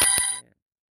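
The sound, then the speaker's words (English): A single short, bright phone notification chime rings out alone, fairly loud, with a quick ding that fades out in under half a second. “Excuse me, I'm getting notifications on my phone”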